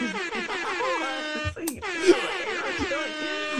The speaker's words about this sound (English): Yo, hold on, you get air horns.